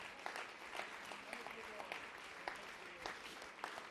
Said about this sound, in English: Can we give God a big hand clap?